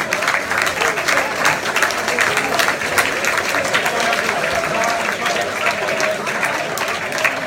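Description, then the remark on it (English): A large crowd of a club's fans and staff gives itself a round of applause at a season event, a dense, sustained wash of clapping that stays loud and even for several seconds without any speech over it. “So please give yourselves a massive round of applause.”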